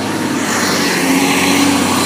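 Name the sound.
garbage truck passing by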